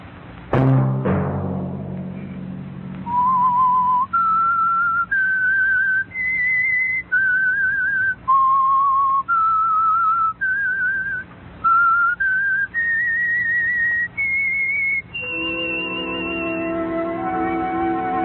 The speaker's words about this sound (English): That whistle be your signal for the Signal Oil program, The Whistler, each Sunday night at this same time.